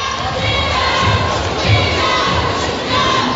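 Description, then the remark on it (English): At a basketball game during free throws, a steady wash of crowd noise with organized cheering squads chanting and shouting together, loud and continuous throughout, with a few brief swells and a dull thump midway. “Crowd mostly silent other than the cheering squads.”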